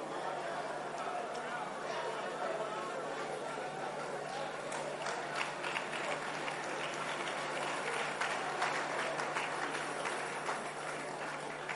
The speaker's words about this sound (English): Make sure that as you clap, you are not one of those.